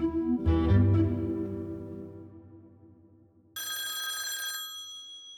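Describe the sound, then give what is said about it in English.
A deep, resonant tone fades out slowly, then a telephone bell in Youngstown breaks in with one bright, shrill, metallic ring lasting about a second before cutting off, a call from a crooked cop of the sheriff's department vice squad. No one speaks. “got a call from a crooked cop.”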